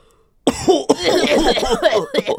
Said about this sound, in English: For this one, you're sitting in the back of your politics class, and someone in the front row is very sick because of the fall, and they start coughing, and it's really gross, like this.